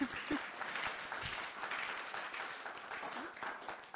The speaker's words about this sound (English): Yay! Let's clap them. Yay!